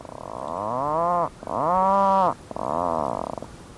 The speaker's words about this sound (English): What you're listening to is the call of an Atlantic puffin, standing guard outside its burrow on the tiny island of Hurniken in the remote Rust archipelago of Arctic Norway.